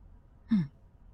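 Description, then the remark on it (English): A single breathy exhale, like a slow sigh, heard in the distance on a space station and echoing down a hallway over and over, rises briefly out of a low, steady background hum and then fades away, leaving the room tone alone. “It echoes down the hallway. It almost sounds like the station is breathing.”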